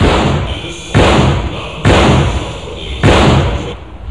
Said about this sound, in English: The stereo recording you have just heard of a muzzle-loaded bronze cannon of the type used by Napoleon in his 1812 Russian campaign